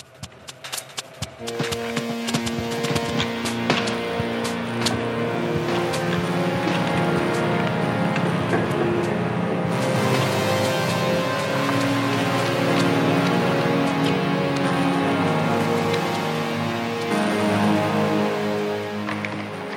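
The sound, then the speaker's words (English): A music track built from sampled radiator, glass table and scissor sounds, recorded and then flipped, reversed, stretched and twisted: dense, sharp clicks and drip-like taps over layered sustained tones, steady and fairly loud for about twenty seconds, with no voices. “The radiator, glass table, and scissors eventually become this.”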